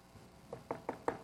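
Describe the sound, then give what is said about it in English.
Several sharp, evenly spaced knocks on a door, a quick rhythmic series of raps that grows slightly louder, with no voices. “Imagine Jesus had knocked on the door right then.”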